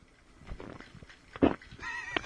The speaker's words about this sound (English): Can you... I want to test something out here. If you can hear me drink while I do this, because I did this on the last.